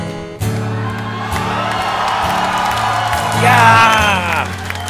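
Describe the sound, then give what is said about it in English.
A live crowd cheers and whoops loudly and steadily, with high voices shouting over the roar and a swell of excitement near the end, while low instrumental tones hum underneath. “Oh, we have a crowd here.”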